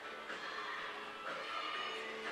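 Steady indoor crowd murmur of fans filling War Gym during a timeout in a university volleyball game between the UBC Thunderbirds and the University of Regina Cougars, a dense wash of many voices chattering with no single speaker standing out, holding an even level throughout.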